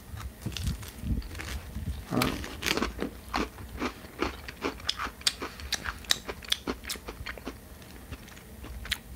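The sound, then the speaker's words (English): Someone takes a tester bite of a crunchy gingerbread cookie and chews, with a rapid, irregular series of sharp crackling crunches and no talking. “Since we won't decorate all of them, I'm going to take a tester bite and see.”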